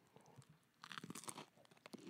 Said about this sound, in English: Should I crunch in the mic?